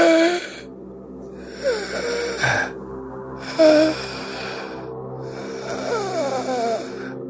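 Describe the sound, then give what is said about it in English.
A voice imitates labored, rasping gasps: four drawn-out, wheezy breaths in a slow in-and-out rhythm, fairly loud, with no talking. “The flames continue to lick off of him, and eventually, like, the fire goes out, the oil burns up, and he's just laying there, like, crisp, and he's gasping.”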